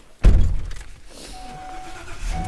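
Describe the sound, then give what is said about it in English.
A heavy thunk, like a car door shutting, followed by the low steady rumble of a car interior with a faint whine rising in the background, during a short car ride to the Munger Mountain North Trailhead in Bridger-Teton National Forest. No one speaks. “starting with a short car ride from the center to the Munger Mountain North Trailhead.”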